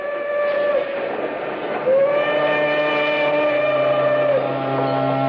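steam train whistle

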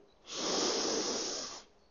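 deep inhalation

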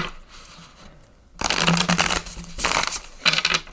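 shuffling tarot cards

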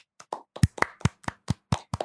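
applause

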